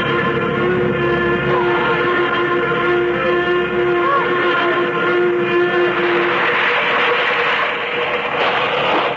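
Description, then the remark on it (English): A diving plane, coming down much too fast, roars with a loud, continuous rush. Steady whining tones are layered over it, and the noise swells into a broader, harsher rush toward the end. No one speaks. “Suddenly, the plane lurched sharply. There was a loud rushing sound in my ears, and I realized that we were coming down.”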